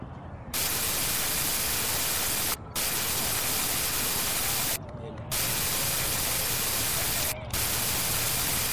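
Loud, steady shortwave radio static, a harsh full hiss broken by three brief dropouts, as if the dial is being scanned from one frequency to the next while listening for ham radio operators.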